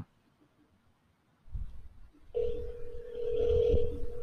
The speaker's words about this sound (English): It's dialing.